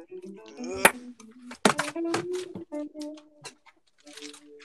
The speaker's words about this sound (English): Gunshot. Dude, I can add in different sounds as well.